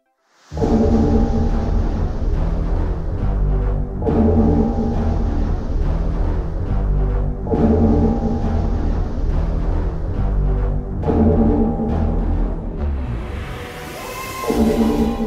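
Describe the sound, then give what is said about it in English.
The TARDIS cloister bell, a warning of imminent disaster, tolls four times at slow, steady intervals, each deep, resonant clang ringing out loudly over a low droning hum, with a rising hiss near the end. “TARDIS Cloister Bell. Imminent disaster.”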